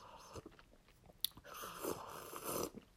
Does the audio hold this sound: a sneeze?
no